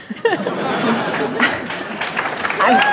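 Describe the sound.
An audience claps steadily for a few seconds, a dense wash of hands mixed with crowd murmurs and a few raised voices and cheers near the end.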